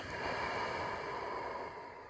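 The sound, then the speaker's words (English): A long, steady exhale during a guided breathing exercise, a soft airy rush of breath that holds evenly for about two seconds before easing off slightly at the end. “Breathing in and breathing out when you don't want to.”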